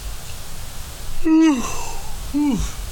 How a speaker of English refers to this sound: So there might be lots of yawns. This is background noise. You're trying to sleep and you hear me yawning.